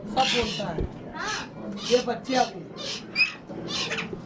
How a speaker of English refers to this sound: What are these? Minor birds. Oh, and these are parrots.